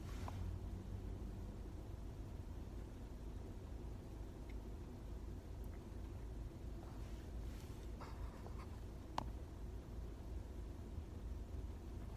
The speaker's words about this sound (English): back again, recording this in the car in the mobile studio.